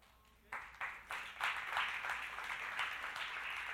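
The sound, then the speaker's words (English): Scattered, hesitant clapping from an audience begins with a few isolated claps, then gradually fills in to a steadier but still modest round of applause, with no one speaking. “Some of you didn't know how to clap for that.”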